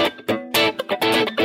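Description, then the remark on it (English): Dry, clean electric guitar on the center single coil pickup, played in short rhythmic chord strums, bright and percussive with a snappy attack, several stabs in quick succession with no effects, in a funky style. “And then I'll usually go to maybe my single coil pickup in the center, kind of start there. But you can see when it's really dry like this, again, it's great if I'm playing funk or something.”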